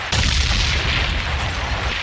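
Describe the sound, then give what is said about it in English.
A pump-action shotgun sound effect: one sharp, loud blast followed by a heavy, sustained booming rumble that carries on for about two seconds, with no voices. “Any boy this way, let me hear the pump action sound.”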